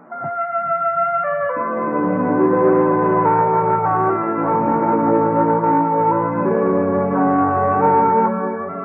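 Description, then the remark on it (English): The familiar three NBC Radio network chimes: a short opening note gives way to a full, sustained chord that hangs steadily for several seconds before fading slightly at the end. Loud, no voices. “Yes, for the best in Friday night radio entertainment, remember to tune where you hear the familiar three chimes for the Bob Hope Show and the Phil Harris Alice Faye Show.”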